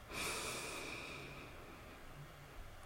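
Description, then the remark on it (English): A long, deep inhale drawn through the nose during a guided breathing exercise, airy and hissing, starting strong and slowly tapering over a few seconds, with no talking. “And in one more time.”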